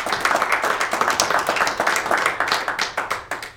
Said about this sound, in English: Give him a hand clap.